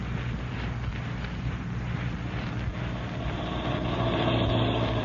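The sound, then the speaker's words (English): A car engine rumbles steadily, a low continuous drone that swells slightly toward the end as the car pulls up at Shack 6 of Hyla's Cabins and settles into an idle. No voices are heard. “You drove me so close to this door, you can sit right here and still satisfy those nosy ears of yours.”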